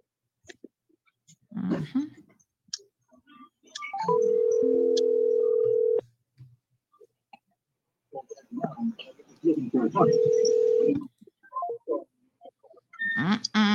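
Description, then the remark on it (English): A telephone line gives two long, steady electronic tones, a two-second one and a shorter one later, with brief sounds and other noises between and around them. “Let's see if we can get a hold of her this morning.”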